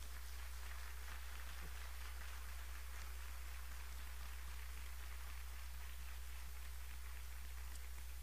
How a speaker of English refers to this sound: And so before we even begin, can we just show an appreciative applause at the beginning of this?